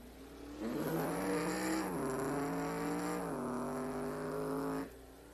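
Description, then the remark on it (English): Race car engines roar loudly on a track for about four seconds as cars merge with 36 laps to go, their high whining pitch dipping and shifting as the cars go by, then the noise cuts away abruptly. “Got some cars merging here.”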